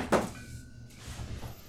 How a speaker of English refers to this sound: I went to pick up my phone for my water line of the week and then it fell on the floor.